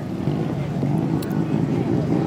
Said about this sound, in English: How's the car running? Now it's running good. That's cooler. We got to go back to the lab and figure out how to keep it cooler.